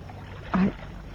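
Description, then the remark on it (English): A small boat glides through water with a steady, low wash of noise, broken midway by a brief, louder creak like an oar working in its lock. “I didn't know you could handle a boat”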